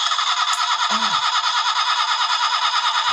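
A car engine cranks over and over in a steady, rapid churning rhythm without catching, loud, with a brief squeal partway through.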